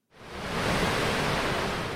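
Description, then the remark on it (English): Steady ocean surf at the rocky coast of Cape Flattery, where the Strait of Juan de Fuca funnels water in between the US and Canada, a dense, continuous wash of breaking water that swells in quickly and holds a full, rushing roar, with no voices. “Here at Cape Flattery, it's a very productive marine area.”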